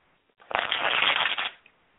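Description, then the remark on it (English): A deck of cards is riffle-shuffled once for a card reading, a dense burst of rapid fluttering clicks lasting about a second, fairly loud, with no talking. “Who's shuffling now? Oh, that was me.”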